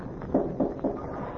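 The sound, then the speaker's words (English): Three evenly spaced knocks on the door of a house, in the rain. They are dull and fairly soft, in a quick steady rhythm, then silence. No voices. “I didn't mean to push open your door. I only started to knock.”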